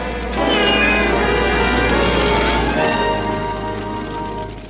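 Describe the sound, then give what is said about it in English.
A cat meows loudly, a long, drawn-out wavering yowl that bends in pitch and carries on for several seconds with no talking. “My cat. Never fear, ma'am. I'll save your cat.”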